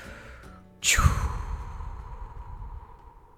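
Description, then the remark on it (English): A single deep, audible breath, a sharp rush of air that settles into a long, gradually fading exhale like a heavy sigh, with no talking. “And deep breathing, ready, go.”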